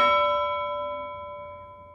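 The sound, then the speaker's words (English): A single bell is struck once, its bright metallic tone ringing out clearly and slowly fading over a couple of seconds, with no voices present. “See, now on my podcast, when we say prevail, we have to ring a bell.”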